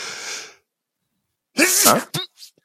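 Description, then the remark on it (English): A single loud sneeze bursts out after a brief breathy rustle and a pause, followed by a couple of short, quieter snorts as it trails off. “Bless you. He knew a sneeze was coming.”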